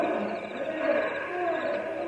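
A cougar near a campsite with a campfire growls in a low, rasping, continuous rumble for about two seconds, steady in loudness, with a faint wavering tone running through it.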